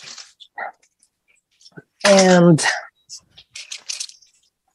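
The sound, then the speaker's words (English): Short, dry scraping and gritty rustles come in scattered bursts as brown sugar is scooped out of a Ziploc bag and poured into a pan, with one brief spoken word midway. “So I'm going to open that and then we're just going to scoop out the brown sugar and pour that into the pan.”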